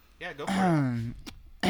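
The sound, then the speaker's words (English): A single exaggerated, voiced fake throat-clearing sound: a short gritty burst, then a drawn-out rasp that drops in pitch, and a brief breathy catch at the end. “Wait, people want to hear me fake clear my throat again, all right?”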